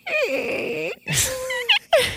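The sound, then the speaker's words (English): A human voice imitates a creaking cellar door with a long, wavering, nasal groan that bends up and down in pitch, then breaks into short squeaky rising and falling whines, with no words spoken. “Can you give us your creaking door, which was terrible?”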